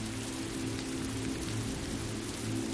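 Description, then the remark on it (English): Steady rain patters on a roof and skylights, a dense, even hiss of drops with a low constant hum underneath, continuous and fairly quiet with no voices. “Rain patters on the roof and skylights, dripping down the gutter into puddles”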